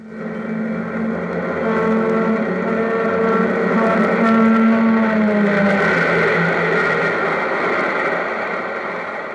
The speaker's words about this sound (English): Did you ever notice how the pitch of a train whistle suddenly lowers as the train rushes past you?